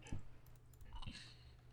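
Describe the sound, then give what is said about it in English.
A few soft keystrokes tap on a computer keyboard as someone types in the word sleeping, sparse and irregular, quiet against a low background hum, with no talking. “I'm typing in sleeping.”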